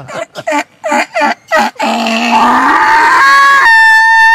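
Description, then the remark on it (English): A person imitates a donkey bray, a quick run of about six choppy, rhythmic gasps followed by a long, loud, strained tone that climbs to a high, thin note at the end. “You're going with the donkey, huh?”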